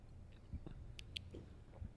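Quiet sipping of wine from glasses during a wine tasting, with two brief soft slurps close together and faint mouth sounds over a low background hum, no talking.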